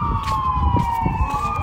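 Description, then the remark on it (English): An ambulance siren wails steadily as it passes, its tone slowly sliding lower, over a rumbling street background with traffic noise. “It's like ambulances, and there's people walking all near me and stuff.”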